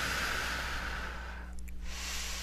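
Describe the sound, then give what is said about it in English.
A slow, deep breath drawn in with a soft, airy hiss, a brief pause, then released in a long exhale. Quiet, with no talking. “Nice deep breath.”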